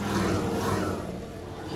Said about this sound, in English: We are back on the highway, so if you hear cars whizzing by, that's why. We're back on Highway 61 now.